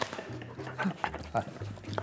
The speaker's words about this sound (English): I think I should probably remove them, otherwise that's all we're gonna get, right? It's dogs. Yeah, and they seem to know when the electric moment is.